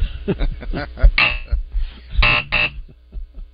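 Two harsh, flat buzzer blasts, each about half a second long and separated by a short gap, cut loudly over faint murmuring voices.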